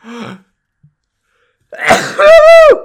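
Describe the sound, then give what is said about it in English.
A brief breathy sound, a pause, then one loud sneeze: a noisy inhale burst followed by a sharp, tonal, voiced 'choo' that rises and falls before stopping abruptly. “Bless you.”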